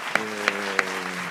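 A round of applause welcoming a guest: a steady wash of clapping with three sharp, louder claps popping out at even intervals over a faint low hum.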